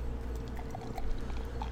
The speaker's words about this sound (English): I'm going to crack this. It's, I'm going to pour it and see. Could just make a vanilla milkshake. Let's see. Let's see if it pours thick.